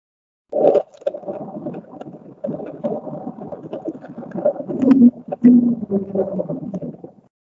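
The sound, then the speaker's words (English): An underwater ocean recording titled Julia: a long, wavering low moan lasts about seven seconds, swelling and dipping in pitch with a rough, groaning texture and no voices. “I'm going to play the sound, and then I'll talk about it. But this sound is titled Julia.”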